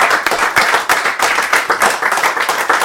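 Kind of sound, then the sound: crowd, round of applause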